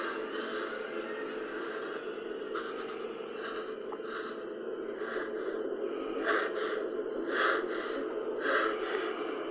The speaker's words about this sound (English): Heavy breathing, that's what's going on.